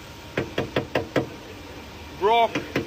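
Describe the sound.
Five quick, hard knocks on rock-hard, stale McDonald's food found in a car, sharp, followed by a short voiced exclamation and two more knocks.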